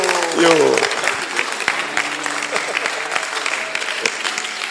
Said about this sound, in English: Clap for me. Clap for me, husbands. I'm speaking for you.